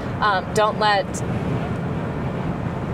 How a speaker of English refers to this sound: And then again, this is in a car.